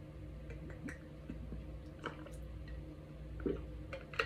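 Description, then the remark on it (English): Someone drinks water from a plastic soda bottle from a SodaStream: soft, scattered gulps and small clicks of the bottle, quiet against a low steady hum, with no talking. “I promise you that is water.”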